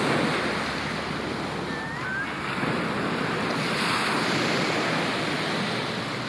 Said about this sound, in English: and now we're at the beach, so it's literally steps from the car to the road to the beach, and you can probably hear the ocean at this point.